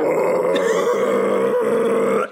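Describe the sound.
A voice imitates a guttural death-metal scream in the style of a singer, a low, growling roar sustained at full loudness for about two seconds before cutting off abruptly.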